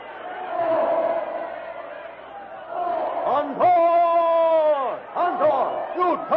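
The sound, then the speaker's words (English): A frantic, panic-stricken crowd flees from charging elephants, roaring and shrieking, a dense wall of voices building into several long, piercing screams that rise and fall, with more panicked yells overlapping. “Followed by the other elephants who have tossed their riders aside, the jungle titan lunges through the screaming, panic-stricken crowd straight toward the ape man.”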